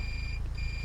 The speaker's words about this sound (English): My phone is actually vibrating.